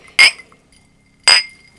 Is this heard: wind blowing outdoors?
no